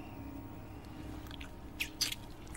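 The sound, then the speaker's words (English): A crunch of a fly being bitten in the mouth: two or three quick, crisp snaps near the end, over a low steady background hum, with no talking. “And then he like crunches this fly.”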